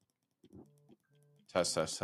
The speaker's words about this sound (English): I mean, this is the, yeah, this doesn't have the buttons, but like these are all mechanical. Oh, okay. I don't know if you can hear yeah, this. Yeah, I can hear that clicking. Yeah. Yeah. I made these sticks mechanical.